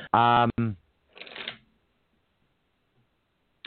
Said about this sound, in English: I'm being told I'll shuffle this again because it seems like the same cards keep coming. Hold on.